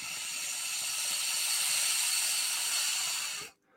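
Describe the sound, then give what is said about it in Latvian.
Water bubbles steadily through an electronic hookah, a loud airy hiss with a faint rapid gurgle beneath it, continuing without pause for about three and a half seconds before cutting off abruptly. “Redzēju, kā burbuļo.”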